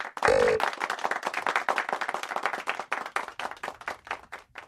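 rhythmic hand clapping

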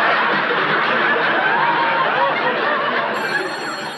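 telephone ringing

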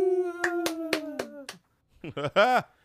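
hosts clapping hands

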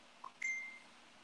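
phone notification beep

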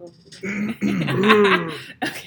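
throat clearing

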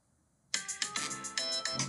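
phone alarm ringing

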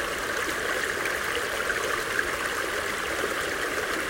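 flowing creek water

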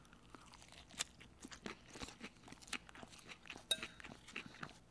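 crunchy salad being chewed

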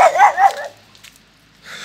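dog barking

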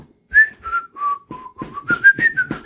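person whistling

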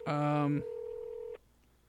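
telephone ringing

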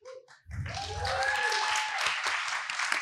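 audience applause and clapping

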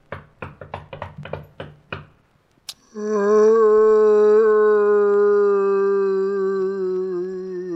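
knocking on a door

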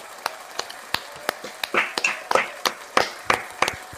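round of applause

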